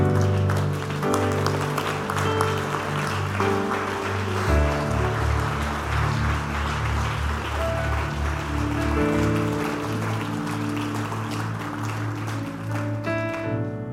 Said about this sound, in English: Stand to your feet and clap your hands and thank God.